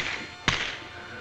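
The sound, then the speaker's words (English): A single sharp, loud slap across the face as Payne slaps Morgan cracks out once, sudden, against a steady hiss of background noise, with no voices. “Morgan storms out when Payne slaps her.”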